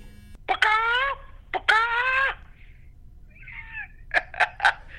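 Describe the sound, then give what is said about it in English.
A high, nasal voice imitates a chicken, going "bacock, bacock" while attempting a turkey sound for Thanksgiving week: two drawn-out, wavering squawks, a brief pause, then three quick clucks. No other sounds are present. “Why did you do bacock, bacock? That's a chicken.”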